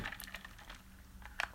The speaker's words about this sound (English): I'm going to get a sip of coffee.